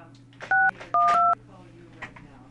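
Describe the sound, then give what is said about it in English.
Three short electronic telephone keypad tones, dialed to call someone, beep in quick succession, the last two nearly joined, clear over a low background hum with faint murmuring voices. “Yeah, we're trying to get her on the phone right now.”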